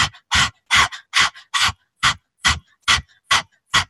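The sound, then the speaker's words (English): A person with tongue out imitates a dog's panting as a breath-work exercise: about ten quick, breathy huffs in a steady rhythm, fairly loud, with no talking. “Okay, I know it might sound a little crazy, but stick your tongue out and start panting like a dog.”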